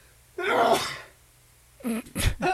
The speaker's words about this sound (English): You still sneeze like a man. That'll never go away.